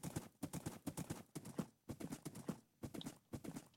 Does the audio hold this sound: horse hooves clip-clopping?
yes